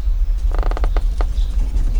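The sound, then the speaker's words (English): Old wooden attic timbers creak alarmingly in a rapid, ratcheting series of strained groans, fairly loud, over a steady low rumble, as part of the ceiling gives way, then trail off into a few scattered creaks. “Suddenly, the attic's timbers creak alarmingly, and a part of the ceiling gives way”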